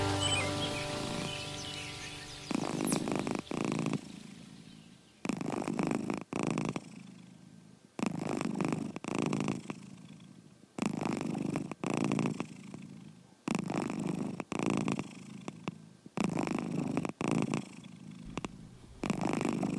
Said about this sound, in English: It's the sound of a happy cat. It's not my cat, it's Terry's cat. Isn't that a soothing sound? She sent me this audio. This is recorded from her iPhone.